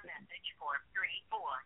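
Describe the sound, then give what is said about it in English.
Telephone off-the-hook noise: muffled, tinny, voice-like warbling coming through an open phone line in several short bursts, fairly quiet and thin, with no clear words. “Oh, I think your phone is still off the hook.”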